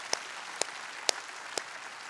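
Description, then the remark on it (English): A church audience applauds in a soft, steady wash of clapping, with a few sharper claps standing out at an even beat. No one speaks. “We should give you guys a huge round of applause.”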